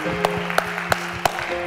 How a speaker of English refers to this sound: Let's give God a hand clap of praise once again.